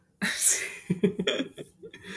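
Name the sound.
sneeze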